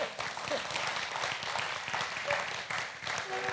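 A church audience applauds steadily for the church's youth director, many hands clapping in a dense, sustained wash of sound, with a few faint voices mixed in beneath the clapping.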